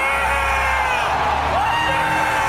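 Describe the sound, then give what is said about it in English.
A large crowd roars and cheers wildly as Kratos appears in a God of War showing, a dense, sustained wall of whoops, yells and screams that stays loud from start to finish. “So the crowd goes fucking crazy because this is the first time they've seen Kratos in 3 years, which is a longer gap for God of War.”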